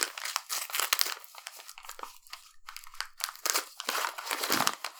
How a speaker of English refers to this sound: Oh, I'm ripping the nice paper.